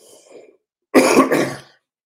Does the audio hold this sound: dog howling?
no